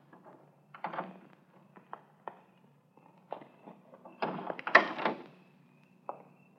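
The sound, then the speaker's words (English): A car door is eased shut with a soft thunk and rattle as people get out of a car stopped around the corner from a filling station, with a few quiet, scattered footsteps and scuffs in an otherwise hushed setting. “We stopped around the corner from the filling station. Easy on the door when you get out.”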